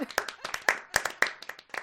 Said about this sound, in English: I was trying to find proper applause for you.